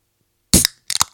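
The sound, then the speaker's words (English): A sharp hiss-pop of a beer bottle cap being pried off, followed a moment later by a couple of quick metallic clinks, fairly loud with no talking. “That's how you should open up every podcast with one of those...”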